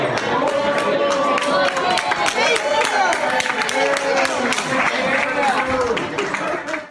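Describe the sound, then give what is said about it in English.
A crowd erupts in loud, sustained cheering and clapping as a woman is taken off in a wheelchair and escorted out, continuing for several seconds with overlapping shouts and voices mixed in, fading slightly toward the end. “There was a viral video that was going on, and the ladies actually, they took her off on a wheelchair, and she's flipping people off as she's being escorted out, and people are cheering and everything.”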